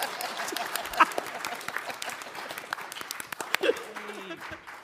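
Steady applause from an audience, a dense crackle of many hands clapping throughout, with a few sharper claps standing out and a brief vocal sound partway through.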